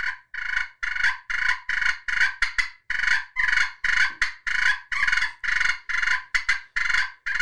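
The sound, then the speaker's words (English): A loud run of raspy, purring wild turkey fight calls, imitated by a hunter to bring a bird in, fired off in quick irregular bursts for several seconds with no talking. “Just a schoolyard fight. Let's go and see who's getting beat on today.”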